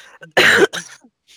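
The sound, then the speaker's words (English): A single sharp, loud cough from a person getting over a cold, followed by a rougher, softer throat clearing, with a faint breath trailing off at the end. “So you're gonna hear me coughing in your ear again.”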